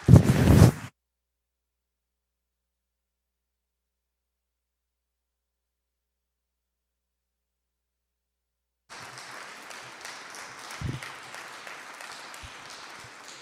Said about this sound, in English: please welcome the National Assistant to the Honorable Minister Louis Farrakhan, Student Minister Ishmael Muhammad, as he takes on the subject, this extraordinary man, Jesus. Please welcome him with a round of applause.